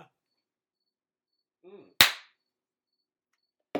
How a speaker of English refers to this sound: I knew that you had to clap because, like, you gotta align the audio.